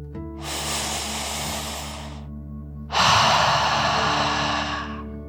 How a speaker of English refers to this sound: Breathe in through your nose, filling up your lungs, and then out through your mouth, imagining you are breathing fire, like a dragon. Ready? Deep breath, in and out.